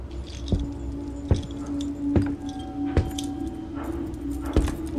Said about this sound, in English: And the marshals come check on you every, what, 20 minutes? 8 to 15 minutes. They come in, even though they had cameras, they come in and be like, you guys good? Okay. So and you should hear the keys, that's coming. You hear keys.